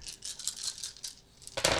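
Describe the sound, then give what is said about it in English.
A large handful of many dice is thrown, rattling and clattering in a quick run of bright clicks, then a louder burst of tumbling as they spill out together. No one speaks. “God damn, it's a lot of dice.”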